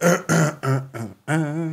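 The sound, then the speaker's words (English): A voice clears its throat in a run of four short, voiced bursts followed by one longer, drawn-out rumble, all fairly loud with no other talk. “Let me clear my throat.”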